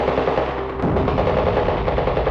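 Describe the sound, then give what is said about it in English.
Rapid bursts of automatic rifle fire from men pouring out of the back of an armored truck crackle through a dense, noisy din, the shots blurring together in a steady, chaotic stream after a brief lull at the start. “Men with automatic rifles pour from the back of the armored truck.”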